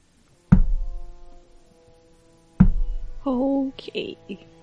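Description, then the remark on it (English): Two heavy, booming knocks, growing heavier, land about two seconds apart, each with a deep resonant ring-out, followed by a brief creaking, groaning tone after the second blow. “The knocking becomes heavier.”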